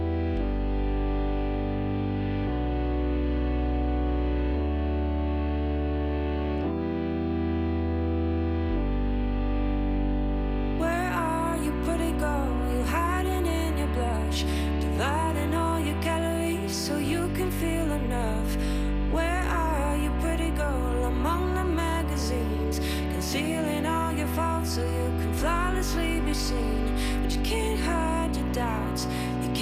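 A pop song from a new EP due later this year opens with muffled, steady sustained chords, then bursts into a bright full mix around eleven seconds, with a gliding sung vocal melody over effected, slightly distorted instrumentation.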